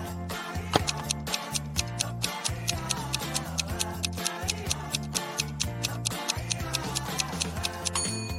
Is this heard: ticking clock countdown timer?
yes